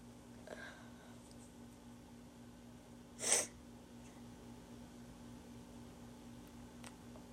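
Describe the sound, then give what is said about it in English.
A single sharp sneeze, caused by allergies, bursts out partway through, fairly loud, over a low steady hum with no talking around it. “Sorry, my allergies are bad.”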